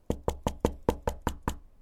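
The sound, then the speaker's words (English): Eight quick, evenly spaced knocks on a door, each a sharp thud with a short resonant body, rapping in a steady rhythm with no voices present. “Okay, let's go ahead and knock on the door here.”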